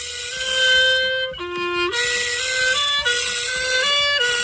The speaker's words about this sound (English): I guess it would be a skill if he's able to play the clarinet and also rev a chainsaw at the same time